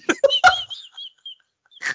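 A chicken clucks in a few quick, clipped bursts, then a drawn-out squawk and one last cluck after a short pause, fairly loud with no one talking.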